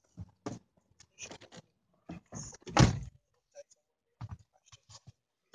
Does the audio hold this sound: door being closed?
yes